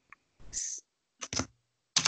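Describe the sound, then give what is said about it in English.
Fast typing on a computer keyboard, a Google search for Zarude, comes in three quick, clattering bursts separated by brief pauses. It is fairly loud, with no one speaking. “Oh my God, listen to her. Destroy that keyboard.”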